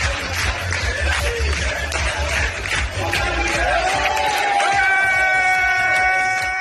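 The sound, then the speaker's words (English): A crowd claps along in a steady rhythm over loud, dense noise of cheering voices, with sustained sung or musical tones rising in the second half, as former U.S. Secretary of State Mike Pompeo dances with Israeli soldiers at a rejuvenation center for soldiers returning from Gaza. “Clapping along.”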